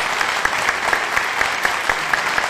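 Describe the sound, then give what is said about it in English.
A crowd claps steadily throughout, a dense, fairly loud patter of many hands with a few sharper individual claps standing out. No one speaks. “Tumultuous applause.”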